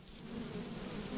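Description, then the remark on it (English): A dense, steady drone of many honeybees buzzing together in a 3-pound package holding about 9,000 bees and one caged queen, at a honey farm, a continuous low hum with no pauses, moderately quiet, with no voices. “It's a 3-pound package. Each package contains approximately 9,000 bees.”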